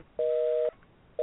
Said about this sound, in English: It's an eternal busy. No, it's been busy, his phone.